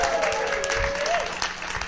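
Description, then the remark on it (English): A show audience applauds previous guest Joy T. Arcand steadily, dense overlapping claps forming a continuous wash of noise, with a few faint whistles or cheers rising through it. “How about another warm round of applause for Joy T. Arcand, our previous guest?”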